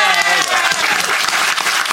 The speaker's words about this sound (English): A round of applause for our audience.